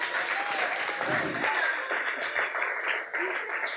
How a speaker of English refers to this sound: Thank you. Give those boys a round of applause.